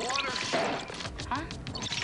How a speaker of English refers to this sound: This is the best way to any computer problems, just pour champagne on it.